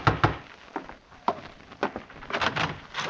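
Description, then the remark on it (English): A sergeant knocks insistently on a wooden door, a series of loud, uneven raps coming in bursts. The pounding sounds alone, with no voices. “Open! Open the door!”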